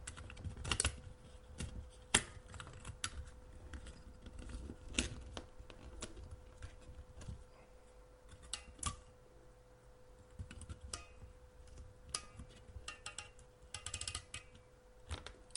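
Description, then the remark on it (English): Handling noises as the socket for the main CPU is taped down on a circuit board: scattered sharp clicks, taps and soft crinkles at an uneven pace, fairly quiet, with no one talking. “Okay, that's going to fall right out as soon as I turn it over. So this is when I'll tape it down.”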